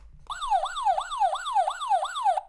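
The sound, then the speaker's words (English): A loud electronic siren alarm whoops in quick repeating downward sweeps, about seven rapid cycles in a steady rhythm, sounding alone with no talking. “So sound the damn alarm real quick.”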